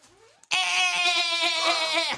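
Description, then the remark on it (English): A person imitates an angry goat, voicing a loud, strained bleat, one long quavering cry held for well over a second, with a brief rising squeak just before it. No other talking is heard. “A pissed off goat.”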